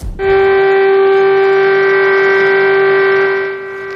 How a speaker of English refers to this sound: Cars, trains, and ships sounded their horns across China today as part of a three-minute moment of reflection to honor those who have died from COVID-19.